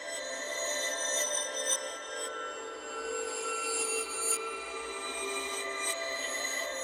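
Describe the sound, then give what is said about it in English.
A reversed swell made by delaying a reverb, bouncing it down and reversing it, forms a dense, shimmering tonal wash of sustained ringing pitches that opens a song. It holds at a steady, moderate level, with a few faint clicks flickering through and no voices. “So anyways, I bounced that down, and then I reversed it, and it led to this.”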